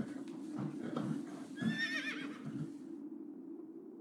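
A single horse whinnies, a shrill, quavering neigh rising out of a steady low rumbling background, then fading away, with no one speaking.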